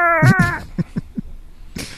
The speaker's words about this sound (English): Yeah, in fact, on the screen, an image of the cat that's actually in your phone pops up and he meows while it's falling.